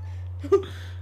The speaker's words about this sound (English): What are you doing to that cat? I just wanted to speak. Oh. Okay, she's stalked. Oh, she's getting angry. Yeah, I wonder why.